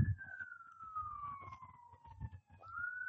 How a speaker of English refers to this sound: Okay, I got an ambulance coming by here, so it might get a little loud